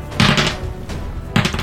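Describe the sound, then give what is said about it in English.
Dice clatter across a hard surface in a few short, rattling bursts, one longer tumble at the start, a brief knock, then another quick roll near the end. “That's one too many dice rolls there, sir.”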